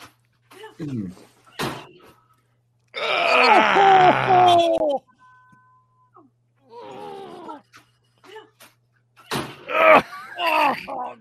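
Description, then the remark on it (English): A person yells into a bed, letting out a loud, strained yell of pain lasting about two seconds, sounding muffled, with shorter groans and vocal noises before and after it. “Just sits there, takes it, and just yells into the bed.”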